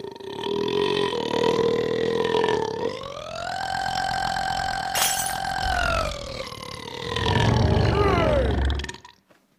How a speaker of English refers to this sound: Well, right now I'm gonna go for another restaurant record. Longest burp.